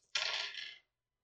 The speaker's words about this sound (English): Okay. I love the sound of dice.